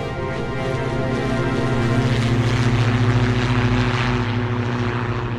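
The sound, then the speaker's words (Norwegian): A propeller airplane engine drones loudly and steadily with a strong harmonic hum, its pitch and intensity rising slightly as the plane goes straight up, its pilots pulling it back up by their own muscle power. No voices. “Og da går flyet rett opp.”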